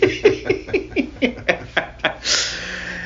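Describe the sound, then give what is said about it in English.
A quick series of about nine breathy, rhythmic gasps builds up, then breaks into one sharp, hissing sneeze burst that trails off into soft noise. “God bless you.”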